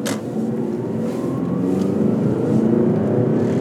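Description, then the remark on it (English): A Nissan car's engine hums steadily and builds slightly as it pulls away onto the highway, a continuous low rumble with rising harmonic tones and no voices. “As soon as this Nissan goes, we are on the highway.”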